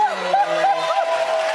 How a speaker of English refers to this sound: Again, listen to the laughter, listen to the clapping, and look how many people agree with what Steve just said.